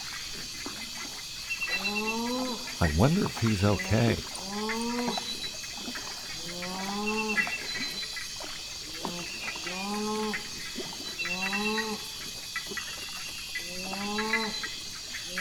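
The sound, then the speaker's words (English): A rufescent tiger heron gives a series of deep, moaning, harmonic calls, roughly eight in steady rhythm, at night on a lagoon in the rainforest, over a constant high insect hiss, with a person speaking briefly. “Would you believe a rufescent tiger heron?”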